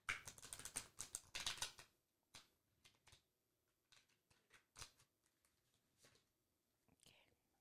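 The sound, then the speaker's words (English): A new deck of playing cards being shuffled and handled: a rapid burst of crisp riffling for about two seconds, then scattered soft snaps and slides of cards, with faint whispering in the background. “Any card you want. Go ahead, shuffle, play with them. This is a new deck.”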